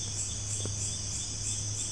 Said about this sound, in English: Can't even hear any horns honking. The loudest sound is the crickets and the frogs.